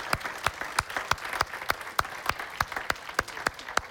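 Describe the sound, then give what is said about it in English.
An audience clapping together to give the Lord a big clap and thank him, a steady wash of many hands with sharp, regular synchronized beats about every third of a second rising above the scattered applause. “Would you give the Lord just a big clap and thank him?”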